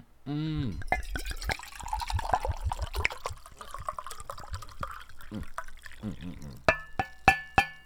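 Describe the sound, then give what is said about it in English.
A drink is poured into a cup in a steady gurgling stream lasting several seconds, followed by a few bright glassy clinks. A brief voice sounds at the very start. “Like, is you pouring slower or, like, is that bitch grown?”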